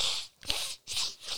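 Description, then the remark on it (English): A run of quick, breathy sniffs, three or four short hissy intakes of air in an uneven rhythm, fairly quiet and with no talking. “You got to lay off that sniff, bud.”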